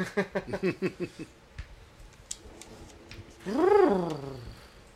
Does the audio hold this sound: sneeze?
no